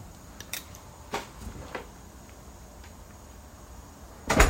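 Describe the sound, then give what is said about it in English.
A door is opened and closed: a few soft, scattered clicks and knocks, then a louder thud at the end as it shuts, with no one talking over a quiet room hum. “I had to make sure she's sleeping because this door be opening by itself, I guess.”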